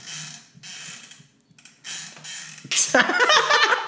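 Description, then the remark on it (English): Chairs creak and rattle in several bursts of mechanical, ratchety noise, growing louder and more strained toward the end, with no talking. “I wonder if you can hear our weak-ass chairs.”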